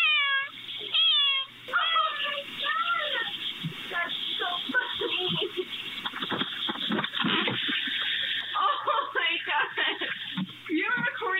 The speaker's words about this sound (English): Here is the 8-year-old cat, Lily, activating the doorbell, meowing, and then the owner going out to get her. Now, keep in mind, the cat had been missing for about 4 days.